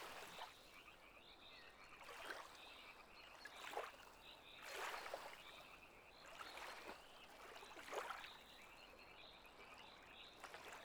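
Frogs croak in a steady chorus in the shallows of a lake, with repeated bursts of calling every second or so over a soft, continuous outdoor hiss and faint trickling water.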